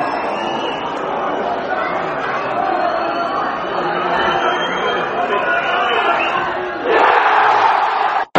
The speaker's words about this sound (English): The crowd were momentarily noisy, and they've gone back to their normal silence now already, despite trying to give us some grief.